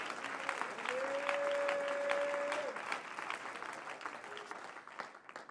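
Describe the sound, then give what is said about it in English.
A church audience claps steadily throughout, a dense wash of many hands, with a sustained musical tone briefly held above the applause before it gradually thins out. “Would you clap your hands if you're thankful for that?”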